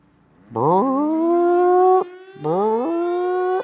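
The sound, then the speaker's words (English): A loud siren wails in two rising blasts, each sweeping up from a low pitch and holding a steady tone before cutting off, with a short gap between them. “Sound the alarms. Sound the alarms.”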